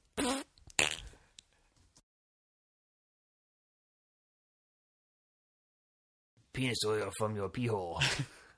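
A few short, sputtering fart noises up close, then several seconds of silence, followed by a longer, buzzy, wavering fart sound that rises and falls in pitch.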